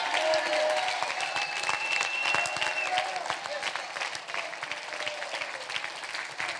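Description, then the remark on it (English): A church audience claps steadily and loudly for several seconds, shouting unto God, with scattered shouts and high cheers rising over the dense applause throughout. “Clap your hands, all ye people. Shout unto God with a voice of triumph.”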